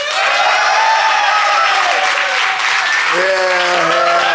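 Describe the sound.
The LOL Fest live audience breaks into loud, sustained applause to vote on which side of a comedy dispute is in the right, a dense wash of clapping with cheers and whoops rising over it, voices calling out near the end.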